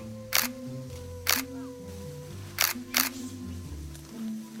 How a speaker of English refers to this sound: But one of the macaques took a hold of the camera and started pressing the shutter button.